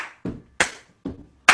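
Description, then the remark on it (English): Hands clap along to a closing song at a church service in a steady rhythm, four sharp hits that alternate between a duller, lower thump and a bright, crisp clap, with no voices. “And you want to get your clap on.”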